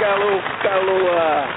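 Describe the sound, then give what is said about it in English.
A steady wash of fake canned applause, played on a show to welcome a new team member, dense and crackly like rain, holds at an even level throughout, with a voice faintly audible underneath. “That's our fake applause for all those out oh, there.”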